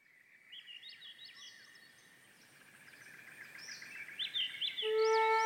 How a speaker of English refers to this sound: Swainson's thrush. One of those birds that has a beautiful song, but you don't see them that often. They hang out in thick forests, and they are migrating at night.